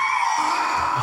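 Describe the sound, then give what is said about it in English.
A man's voice imitates a loud Harley motorcycle exhaust with Screaming Eagle pipes, a sustained buzzing roar held steadily for about a second with no other talk. “That's gonna be me making the noise. Screaming eagle right there. You're gonna have Harley pipes, bud.”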